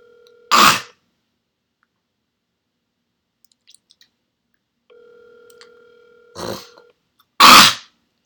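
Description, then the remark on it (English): A steady two-pitched telephone dial tone hums for a couple of seconds amid a few soft dialing clicks, framed by loud clunky bursts like a handset being picked up and handled. “She's immediately on another line of phone.”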